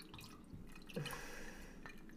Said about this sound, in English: are you pouring drinks at all right now, or what are you doing?